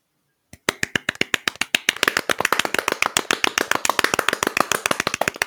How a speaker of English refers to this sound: We can always just applaud like real quick and just like add it in there. Okay, everyone, now.